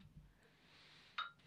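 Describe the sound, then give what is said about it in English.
Two beer glasses clink together once in a toast, a bright ring that fades quickly against a quiet background hum, with no one talking. “Cheers. Let's have a little beer.”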